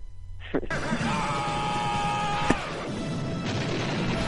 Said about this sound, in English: And we'll send you out on some good Stallone yells.